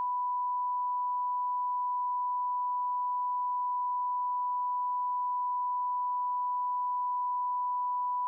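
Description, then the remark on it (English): A single long censor beep: one steady, high-pitched tone that holds unbroken at constant loudness for about eight seconds, with no voices or other sounds around it. “This whole section used to be one out though. Yeah, one beep.”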